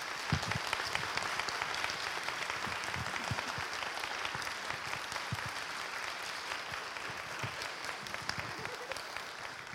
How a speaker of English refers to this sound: Can we share a big round of applause